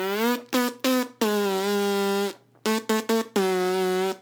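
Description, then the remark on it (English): A voice makes a loud, nasal buzzing sound in a rhythmic pattern, a story character's buzz made for Queen Silencia: a few short buzzes, a long sustained buzz, a brief pause, then more quick buzzes and another long held one at a steady pitch. “Now you can enjoy beautiful sounds, Queen Silencia, like the beautiful buzz that I make.”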